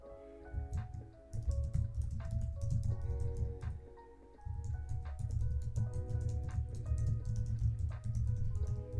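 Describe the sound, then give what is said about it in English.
Irregular clicks of typing on a computer keyboard, coming in quick bursts and scattered taps over a steady low background rumble, with no one talking. “So I'm just kind of typing and seeing where else.”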